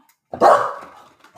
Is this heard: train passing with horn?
no